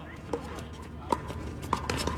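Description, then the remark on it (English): Pickleball paddles strike a ball in a quick series of sharp, hollow pops at uneven intervals, with a faint murmur of background voices throughout. “But y'all are loud and people are getting mad about it.”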